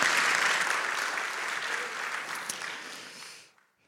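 An audience applauds steadily to cheer a woman for her boldness, a dense wash of clapping with a few cheers mixed in, holding loud for about three seconds before tapering off and fading out.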